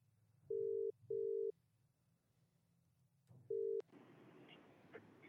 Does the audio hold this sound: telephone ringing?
yes